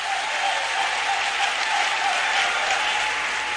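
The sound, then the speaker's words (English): An audience claps steadily and loudly for the event's partners and service providers, including Echo Bank, Enterprise Life, First Bank, Data Bank and Persol, a dense, sustained wash of applause that holds at an even level from start to finish. “One more time, let's put our hands together for them.”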